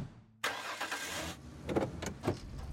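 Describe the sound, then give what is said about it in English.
A pickup truck engine cranks and catches after a brief silence, then rumbles steadily with a couple of revving surges as it pulls away and drives along a country road. “drove Jordan home from the grocery store in her pickup truck”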